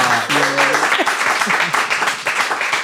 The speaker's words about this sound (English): Can we have a round of applause, please, for Maggie Aderin-Pocock?